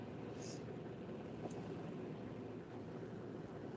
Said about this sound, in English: He's probably in his car. Sounds like it. Sounds like he's dead or he's standing outside at the side of a highway.